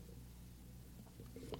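A quiet, brief slurping sip of a drink arrives near the end, over a steady low hum with no talking.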